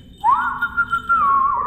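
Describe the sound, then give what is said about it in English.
A single long whistle calling a cat named Aztec, sliding up at the start and then holding a steady mid-high tone with slight wavers for over a second, clear and alone with no talking. “You taught Aztec to come to a whistle.”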